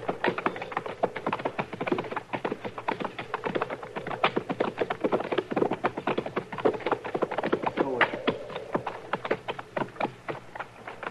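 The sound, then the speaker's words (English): Horses' hooves clip-clop steadily and briskly, a dense run of sharp knocks from more than one ridden horse, continuing throughout with no voices, as the riders approach a shack behind some trees. “All right, we'll ride up to them and look it over from there.”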